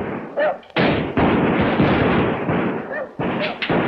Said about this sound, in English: In the house, Neil, Lynn, Mark, and Molly shoot back while Ann reloads and the children watch from a staircase.